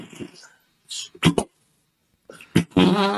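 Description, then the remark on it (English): Several short, sputtering fart noises come in separate bursts with pauses between them, and the last one stretches into a longer, squeakier tone. “Those aren't really farts, are they? Those are an arsehole pleading to stop.”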